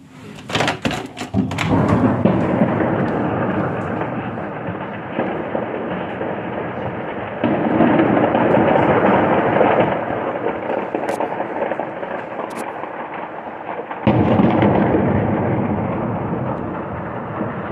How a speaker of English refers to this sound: The breaking news this hour, explosions, many explosions in and around Kyiv, the capital of Ukraine, coming from several directions. Listen to this.